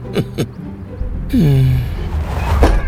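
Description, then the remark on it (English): A frisbee thrown by kids smacks against a window with two quick, hard thumps close together, then a gliding whine and rushing noise, and one more thud near the end. No one speaks. “Hey, will you kids please aim those frisbees away from my window?”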